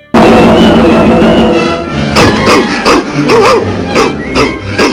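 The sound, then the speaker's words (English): A dog, Barnyard Dog, barks loudly in a rapid, uneven series of sharp yaps, following a couple of seconds of dense, noisy commotion. “Hang on a second, Barnyard Dog.”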